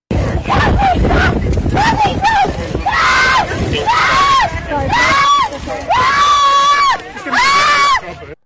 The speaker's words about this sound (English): So she is clearly very distraught and yelling, and her dog. I mean, it's just terrifying.